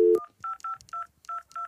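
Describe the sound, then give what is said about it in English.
A quick run of telephone keypad tones, about six or seven short beeps in a steady rhythm, clear, with a brief lower tone at the very start and no talking, as a phone number is dialed to call Santa Claus. “Let's dial up Santa.”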